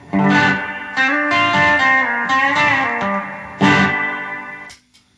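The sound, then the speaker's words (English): Loud, sustained guitar chords drenched in a boingy spring reverb from a Musa FX 900 multi-effects reverb unit, with bright, ringing overtones and a few fresh strums before the sound cuts off abruptly near the end. No voices. “And then we got the boing.”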